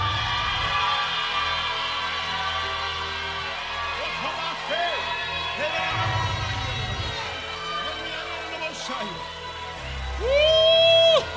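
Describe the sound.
An audience shouts together on a count of three in a dense, sustained roar of overlapping voices, with rising and falling whoops throughout and a louder, higher cry swelling up near the end.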